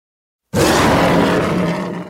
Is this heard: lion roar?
yes